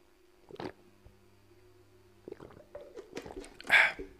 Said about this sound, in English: Wait, I'm gonna take a little water break.